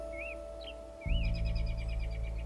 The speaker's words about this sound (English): I was just sitting here at the edge of the field leaning against the trunk of a tree and watching some American robins bicker high above me. The robins flew back and forth, zigzagging between the branches.